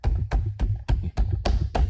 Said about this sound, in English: Oh, that's banging on the door. That is the banger. That is the banger sound, ladies and gentlemen. I like it.